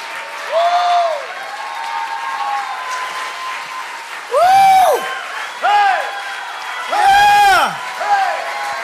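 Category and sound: crowd, audience clapping and cheering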